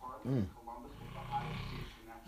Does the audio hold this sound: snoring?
yes